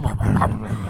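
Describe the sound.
A man voices a single short, gruff bark, imitating a dog as his favorite animal noise in one quick, throaty burst.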